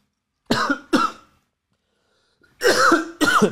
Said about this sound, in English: Choking on my water there.